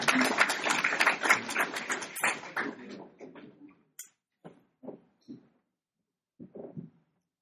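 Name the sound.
audience applause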